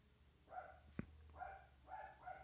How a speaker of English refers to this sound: My dog's barking, and I don't know why.